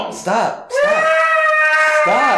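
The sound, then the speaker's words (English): A voice imitates a cat's meow, stretching one loud, high, nasal tone for over a second, with short voiced bursts just before and after it. “She's kind of bitchy. Like, she meows.”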